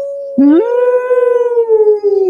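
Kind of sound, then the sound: animal, wolf howl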